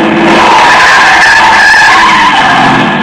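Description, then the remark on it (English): Car tires screech in a loud, sustained skid lasting about three seconds, a harsh squealing whine over the rumble of the moving car, as the driver swerves onto the far sidewalk on a boulevard to miss a man who darted into the street. No voices. “I cut the wheel, climbed the far sidewalk, managed somehow to keep from turning over, and missed the jaywalker by inches.”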